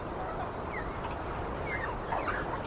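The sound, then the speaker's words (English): Chickens cluck softly, a few scattered, slightly rising calls over a steady low rumble of ambient noise, with no one speaking. They are the 25 chickens Liu Chengyong kept at home, on the day before the Spring Festival in 1984. “The day before the Spring Festival in 1984, Liu Chengyong was looking after the 25 chickens he kept at home when he heard a knock on the gate.”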